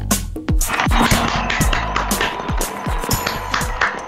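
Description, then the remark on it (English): Fireworks going off for a New Year celebration in a dense, irregular barrage: sharp cracks and pops overlapping with deep, dropping booms, loud and continuous for several seconds with no voices. “Fireworks.”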